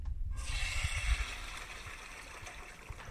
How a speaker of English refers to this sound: any closing thoughts before we flush this toilet?